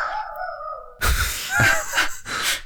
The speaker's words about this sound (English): Sorry, my dog is barking.